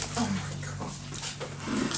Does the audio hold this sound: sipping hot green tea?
no